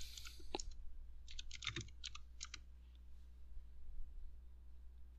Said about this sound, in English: She's having some technical difficulties, but... Although I think we can hear her keyboard.